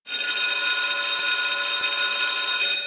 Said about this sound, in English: an alarm bell mounted high on the wall with a round bell and clapper next to it